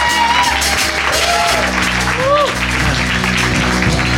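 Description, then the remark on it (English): An audience claps steadily and loudly for their pastors, with a few rising whoops and cheers over a low, sustained keyboard chord underneath. “Give them a clap as well.”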